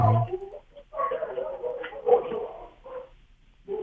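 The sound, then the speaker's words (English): Excited dogs, a Boston Terrier, a Lab and a mixed breed, barking and yipping in a run of quick, uneven bursts, with a few whiny, higher-pitched yelps mixed in. The sound is thin and muffled, as if over a phone line, and nobody talks. “Sound like you got some interesting dogs. Yeah, they're excited.”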